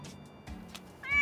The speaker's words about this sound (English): There go the ninja cat.